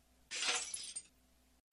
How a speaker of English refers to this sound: A puff of pale smoke rises from the broken glass pellet, enveloping the man's head. He freezes in his bent over position, completely paralyzed.